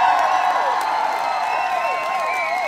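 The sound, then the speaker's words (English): A dense crowd claps and cheers steadily for the Golden Gate Hotel and Casino's 117 years of operation, with whoops and shouting voices rising over the applause. It stays loud throughout, without letting up. “So can we just pause and give lots of applause and cheers to the Golden Gate?”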